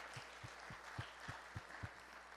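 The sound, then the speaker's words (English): A church audience gives itself a hand, applauding steadily in a dense wash of clapping, with a few sharper, louder claps standing out at a regular beat underneath. “Give yourself a hand.”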